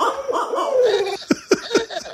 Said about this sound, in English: That was a dog.